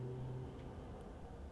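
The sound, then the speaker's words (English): A tractor engine drones steadily, a continuous low rumble with a faint tonal hum and no speech over it. “Tractor.”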